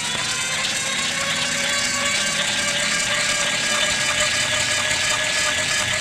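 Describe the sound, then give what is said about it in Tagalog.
A bone-grinding machine in a basement runs loud and steady for the whole stretch, crushing bones fed into it, a dense mechanical roar with a constant whining hum and rattling vibration underneath, no pauses and no voices. “Kitang-kita niya kung paanong ipinasok ng matanda sa bukana ng makinarya ang butong na iwan at maririnig na lang pagkatapos ang pagkadurog ng mga buto sa bawat sulok ng basement.”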